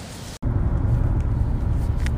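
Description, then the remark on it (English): Steady low rumble of road noise inside a car moving along a road in Iceland, a constant droning hum with a faint hiss on top, briefly cutting out near the start before continuing evenly. “So, we are recording this episode from the car in Iceland.”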